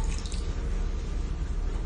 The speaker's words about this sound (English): So this water is moving. It's going from the pitcher into the bowl.